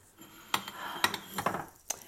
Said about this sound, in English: Oh, actually, I need to hand wash my air fryer stuff.